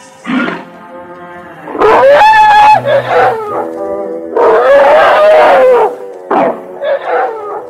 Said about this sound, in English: The natives of the jungle say that whole herds of playful Indian elephants migrate here to bathe.